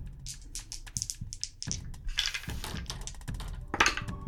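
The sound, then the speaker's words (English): A flurry of sharp little clicks and clacks as two six-sided dice (2d6) rattle and tumble across a hard surface in a tabletop role-playing game, with irregular bursts over about four seconds before they settle. “Go ahead and roll 2d6 for me.”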